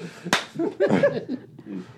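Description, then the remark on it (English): One sharp, loud slap cracks out near the start, a single crisp hit, followed by agitated voices talking and exclaiming. “He already slapped me once.”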